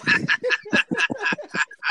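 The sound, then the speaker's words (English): A voice imitates a duck with a rapid run of about eight or nine nasal quacks, fairly loud, evenly spaced over a couple of seconds. “Man, quack, quack, quack.”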